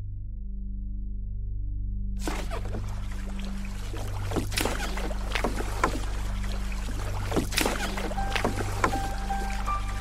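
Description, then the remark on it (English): A boat motors across water in the Everglades around midnight, with a steady low engine drone throughout, joined after a couple of seconds by rushing water and intermittent splashes slapping against the hull, fairly loud. “We're here in the boat.”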